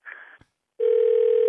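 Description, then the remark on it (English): A telephone call being placed: a short electronic beep, a click, a brief silence, then a steady, loud line tone holding without a break. No one speaks. “Let me call him back. Here we go. Hold on.”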